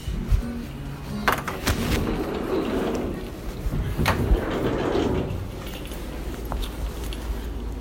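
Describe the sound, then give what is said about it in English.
A door is opened as someone puts on shoes and walks out, heading out to work, with a few sharp knocks and clunks spread over several seconds against a steady low rumble. No one speaks. “Just putting my shoes on and walking out the door here.”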